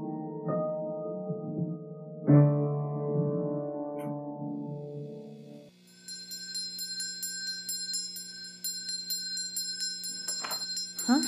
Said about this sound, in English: Where is that ringing coming from?